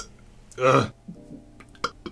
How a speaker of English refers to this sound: because apparently having stuff like this... coffee burps are bad.